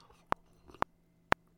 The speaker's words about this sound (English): Before I go any further, I need to take a sip of my beverage du jour.